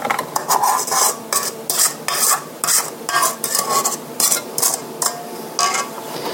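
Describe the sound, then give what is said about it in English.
A utensil scrapes and stirs around the inside of a mixing bowl in quick, steady back-and-forth strokes, fairly loud, with no one speaking. “Looks like the sides of the bowl could be scraped a little.”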